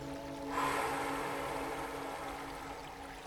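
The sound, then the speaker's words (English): A long, slow exhaled breath during a guided breathing exercise: a steady, airy hiss that starts abruptly and holds for nearly three seconds, fading only slightly, over a soft sustained tonal hum. “And really slowly release it. Through the exhale.”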